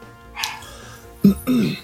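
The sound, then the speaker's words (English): Chihuahuas bark excitedly in a few quick, high-pitched yaps: one brief yip, then two sharper barks close together near the end, moderately loud over a quiet background. “Yeah, that's unfortunately my chihuahuas don't know that it's podcasting time. They're really excited.”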